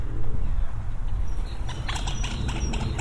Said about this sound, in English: Oh, an argument between two birds. A moorhen and another bird. They want the same bit of branch.